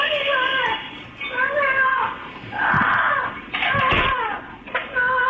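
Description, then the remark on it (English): A woman screams and moans as if in pain, in a series of loud, drawn-out wailing cries that rise and fall in pitch, with short breaks between them, coming from inside a neighbor's home in Florida. “Just a woman screaming, let me out, and screaming and moaning like she's in pain.”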